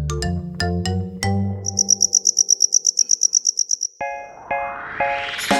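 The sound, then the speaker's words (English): A cricket chirps in a fast, steady run of high, bright pulses, about seventeen in a row, with plucked musical notes sounding just before and after. “That's what people thought it sounded like when a cricket was singing.”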